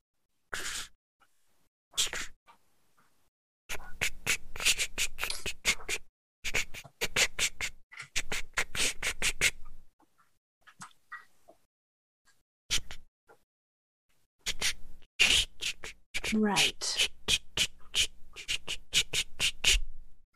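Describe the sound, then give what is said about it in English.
A pencil scrapes across paper in scratchy bursts of quick strokes, broken by short pauses of near silence, with no talking. “It's just the sound of a pencil scraping against paper, filling the room.”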